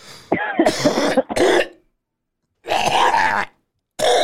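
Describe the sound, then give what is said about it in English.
A heavy coughing fit: a cluster of harsh, hacking coughs, then a longer strained cough after a pause, and another starting at the end, with rough throat-clearing sounds and no speech. “I think I just coughed up a lung.”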